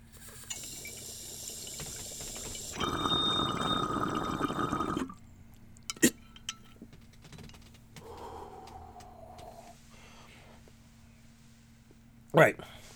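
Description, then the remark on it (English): Someone takes a hit of weed: a soft airy hiss gives way to about two seconds of loud, steady water bubbling, like a bong being pulled, followed by a few sharp clicks and a quieter stretch with a final abrupt pop. “We're going to take another hit because I need to take a hit with you on the show”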